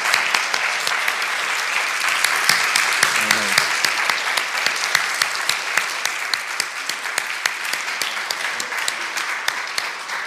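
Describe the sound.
A crowd applauds steadily for about ten seconds, a dense wash of many hands clapping at an even, sustained level, with a brief murmur of voices partway through.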